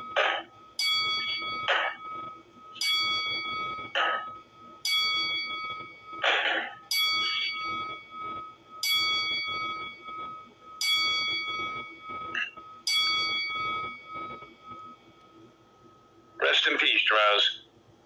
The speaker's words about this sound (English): We would like everybody to join us as we do a 10-bell salute in memory of Darren Drozdoff.